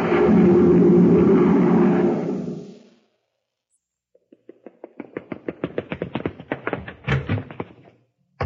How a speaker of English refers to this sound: rushing out the door to the grocery.